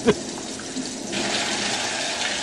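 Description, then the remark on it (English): Steady, hissing rain pours down in a dense wash of sound, growing heavier and fuller partway through, with a brief thump at the very start. “The deluge. The deluge. And it rained.”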